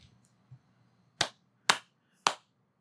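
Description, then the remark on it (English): Three loud, sharp hand claps ring out in a slow, uneven rhythm, each a crisp bright snap with a brief decay, over a faint low hum and no talking. “That clap was loud and shit.”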